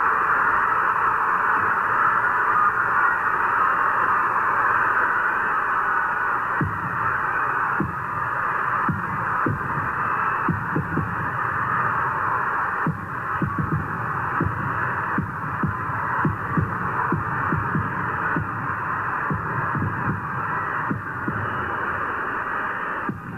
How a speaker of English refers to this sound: During these 25 seconds, you can hear the endless rumble of the crowd, the fireworks going off above Atlanta Fulton County Stadium, and get a sense of the gravity of the moment as every second passes.